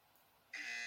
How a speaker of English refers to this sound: If they lose themselves for more than 30 seconds, the buzzer sounds.